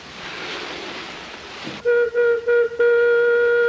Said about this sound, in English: And that whistle indicates there has been a mine collapse. Yeah. It's the happiest signifier of tragedy you'll ever hear. Men are trapped. It sounds like a high-pitched banshee just laughing.